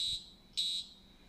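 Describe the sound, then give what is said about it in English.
Two shrill electronic whistle blasts, high-pitched and steady, the first fading out and the second starting abruptly and lasting about a quarter second, loud against a quiet background with no talking. The whistle is an electronic push-button whistle of the kind NFL referees and coaches use. It is pressed rather than blown. “You just push a button and it makes a whistle sound.”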